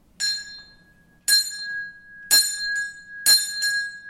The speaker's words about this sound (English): That is the bell that originally would have been rung to announce Mass.